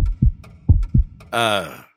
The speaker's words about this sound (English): Wait, is that sound coming from the package? Yeah, want to see what it is? It sounds like a human heart. Why, actually it is. I gotta go. It's not a real heart. It's a very detailed model, complete with sound effects.